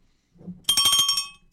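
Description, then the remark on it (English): A bright, metallic bell rings rapidly in a quick trill of repeated strikes, loud for under a second, after a soft low rumble. “Which, by the way, if you're a minority inside a minority inside a minority, you need a few bells.”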